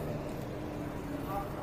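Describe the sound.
A steady low engine rumble fills the inside of a moving bus, with a constant droning hum and faint, indistinct voices murmuring underneath.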